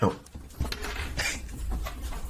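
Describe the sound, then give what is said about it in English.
A dog jumps up at a person and paws, making a run of scratchy scrabbling bursts and soft thumps of claws against a surface, with a low rumble underneath. “I'm going to release it because it's just jumping up at me.”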